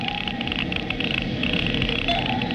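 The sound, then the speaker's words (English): A Geiger counter crackles with a fast, steady stream of dense clicks, unbroken and fairly loud for the whole stretch, with no voices over it. “The Geiger count is clucking like a brood hen.”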